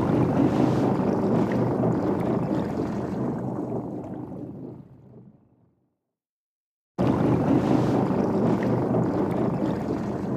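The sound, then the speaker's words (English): A boat churns across the water in Hawaii with wind buffeting the microphone in a loud, steady rush. The noise fades into brief silence, then abruptly returns at full strength. No one speaks. “You ever see a train turn into a boat?”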